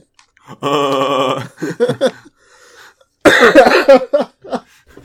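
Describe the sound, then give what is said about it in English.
A man coughs loudly: a drawn-out, strained hacking fit, a couple of short coughs, a brief pause, then another rough burst of coughing and a few trailing ones. “Two old men coughing about DVDs for an hour and a half.”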